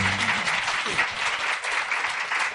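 Steady clapping from a group fills the whole stretch, a dense, continuous patter of many hands, with a brief voice murmuring underneath at the start.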